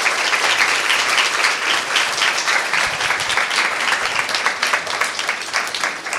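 A room full of people applauding steadily, a dense wash of many hands clapping at once, sustained and fairly loud for several seconds without letting up.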